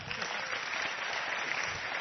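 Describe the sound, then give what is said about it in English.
Steady applause from a church audience welcoming a guest speaker, a dense, even patter of many hands clapping at once, sustained without a break for a couple of seconds with no voices standing out. “yes, give a hand.”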